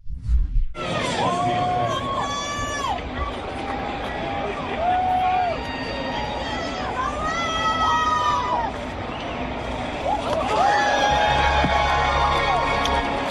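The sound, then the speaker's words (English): A Boston crowd cheers at a Boston Red Sox game as Division I NCAA baseball player Olivia Pichardo throws out the first pitch, a wild pitch to the backstop; a steady roar of many voices with scattered shouts and whoops rising over it, swelling louder again near the end. “It says she definitely showed some velocity in front of the cheering Boston crowd.”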